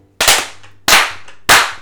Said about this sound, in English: This thing is cool. Let's do three claps.